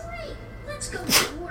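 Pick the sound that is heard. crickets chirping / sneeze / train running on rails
sneeze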